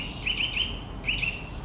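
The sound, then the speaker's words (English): Bright, high chirps from different kinds of songbirds in leafy trees come in two short bursts of three or so quick notes each, over a steady low outdoor hum, with no one talking. “And the trees are just full of all different kinds of singing birds.”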